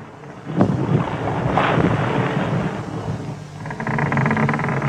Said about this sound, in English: And apparently this ship is the Mary Celeste. Of course. And we get a few more shots of this empty ship as it drifts away into the sea with nothing but the sound of wind and creaking ropes.